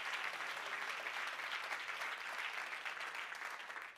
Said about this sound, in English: If you're just thankful for that, would you clap your hands unto the Lord and give him praise?